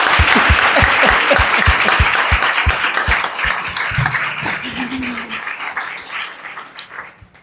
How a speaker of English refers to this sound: I know you guys have a few questions of folks, but a round of applause for these fabulous panelists.